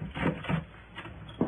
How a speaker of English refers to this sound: I heard a key in the door, so I slipped into the bedroom and under a bed.